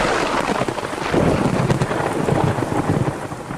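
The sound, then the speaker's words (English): A thunderstorm: steady heavy rain hisses across the whole stretch while deep, rolling thunder rumbles underneath, loud, with no voices. “This tip was brought to you by Crick's Vital Supplies, so that if and when the storm arrives, you are more than prepared.”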